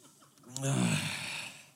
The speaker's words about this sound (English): Oh, and for the next 35 minutes or so, you're gonna hear sniffles over and over and over.